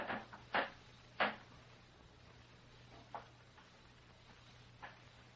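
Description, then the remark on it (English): A few short, dry creaks of wooden floorboards as someone stops right outside a bedroom door at night, spaced irregularly, the first two sharpest and the later ones softer, over a faint steady hum. “I heard a board creak.”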